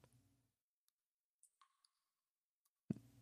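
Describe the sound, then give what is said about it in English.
Several faint, sharp computer mouse clicks tap out at irregular intervals over near-silence as someone searches for something on a computer, with a brief voice murmur at the start and a louder bump near the end. “And it sounds like me clicking my mouse a lot.”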